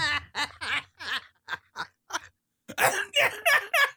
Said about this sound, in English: And now I'm laughing that I can't control my cough. I'll get there.